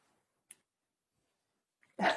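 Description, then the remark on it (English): A dog barks once loudly after a brief quiet stretch, preceded by a faint yip; no talking is heard. “The dog agrees, by the way.”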